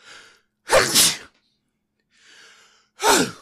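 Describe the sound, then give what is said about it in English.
Two loud, explosive sneezes, each preceded by a sharp breathy intake, with a pause between them and no talking. “I'm going to sneeze in a second. Fuck, I'm going to sneeze.”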